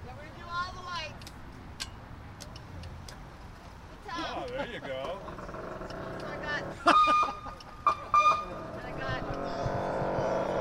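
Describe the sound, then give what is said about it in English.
A car's siren is switched on after the car's power is turned on, giving two short, loud electronic tone bursts that rise over a steady engine-like rumble while people talk. “Let's hear a siren.”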